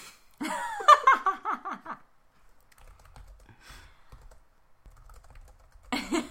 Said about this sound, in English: I don't know what you're typing.